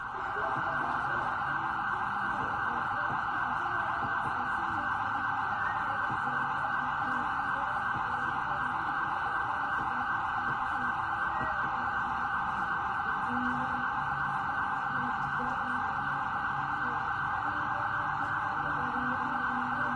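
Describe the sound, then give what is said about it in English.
Emergency vehicle sirens wail continuously for the whole stretch, a loud, steady, piercing tone that never drops out, with faint background rumble underneath. “With the sound of sirens in the background.”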